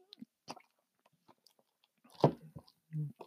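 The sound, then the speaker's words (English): Someone takes a sip of a drink, with a few soft wet mouth clicks, a louder slurp and swallow, and quiet pauses between. No one speaks. “Let me get a little sip of.”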